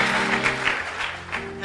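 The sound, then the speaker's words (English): An audience at a prayer service claps for people declared healed, a steady wash of applause with a sustained organ-like tone holding underneath the whole time. “Clap for them.”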